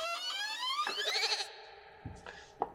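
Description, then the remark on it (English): A goat walks past, letting out a single long, wavering bleat that rises in pitch, fairly loud, followed by a couple of soft knocks and rustles. “Yes, a goat walked past me.”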